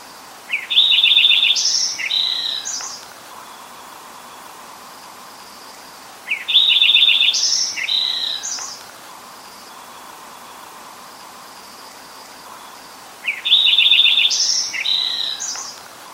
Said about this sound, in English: So that is the Lincoln sparrow, and keep an eye out for those, or an ear out for those, I guess I should say.